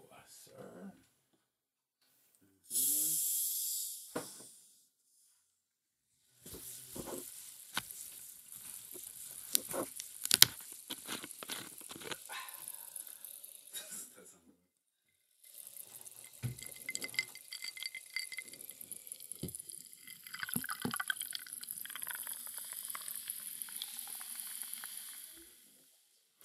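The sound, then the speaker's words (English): Soda water hisses as it's poured, then settles into a dense, crackling fizz of popping bubbles that runs in two long stretches, fairly loud, separated by a brief pause. “If you think that sounds like too little soda water, you're crazy.”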